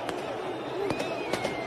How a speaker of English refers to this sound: Were they gunshots? Nah, probably just, not. Just some crackers. Just some, yeah.